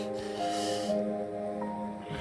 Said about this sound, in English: It's the deep breathing. The exhaling and inhaling, the sissing like a daggone snake, man. God darn. Trying to sound like no snake today?